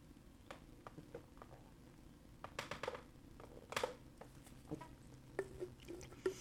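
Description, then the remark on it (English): Faint sipping of water away from the microphone, a scatter of small wet clicks and soft swallowing noises over a quiet background, with no one talking. “While I say that, I'm going to drink a sip of water again.”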